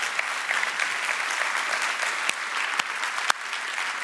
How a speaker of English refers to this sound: We can applaud that.